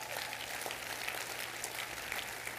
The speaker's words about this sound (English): If you thank God we have a Heavenly Father like that, clap your hands to Him.